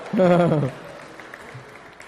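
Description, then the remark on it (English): Scattered applause from a gathered crowd during a sermon, celebrating a couple's newborn baby, patters softly in the background, following a brief burst of a voice at the start, then continuing as a faint, steady clapping. “Can we just give a round of applause?”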